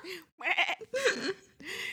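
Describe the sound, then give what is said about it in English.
A voice imitates a wailing baby with a bleating, goat-like quaver, four strained cries in quick succession with short gaps, fairly loud. “And then you hear a fucking baby in the back.”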